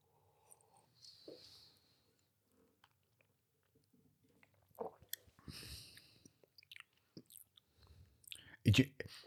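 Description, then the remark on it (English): A quiet sip of a smoky drink, followed by soft wet mouth noises, smacking and a swallow, with a louder slurp near the end. No clear talking. “Try again, second sip.”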